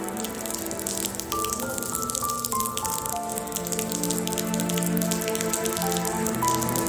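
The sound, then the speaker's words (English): Rain that has just started falling during the setup of chairs for a commencement ceremony on a Friday afternoon, a steady, dense patter of raindrops dripping and tapping on surfaces throughout, continuous, over a faint humming tonal background. “Right now it's solemn because it just started raining and everybody is trying to stay dry.”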